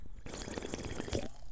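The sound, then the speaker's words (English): A quick sip from a can of LaCroix sparkling water, about a second of wet, slurping liquid with fizzy, crackling bubbles and a few soft gulping clicks, heard alone with no talking. “That was not coughing. That was me sipping my LaCroix.”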